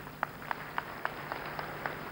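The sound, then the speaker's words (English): An audience claps for itself in a steady, unified rhythm, about eight evenly spaced beats in quick succession, over a low background hum. “Clap for yourself.”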